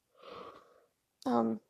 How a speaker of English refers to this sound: And while I yawn, because my brain needs oxygen.